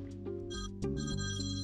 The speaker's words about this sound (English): My mom's ringing. Oh, that is loud. That's a pretty loud ring, not gonna lie.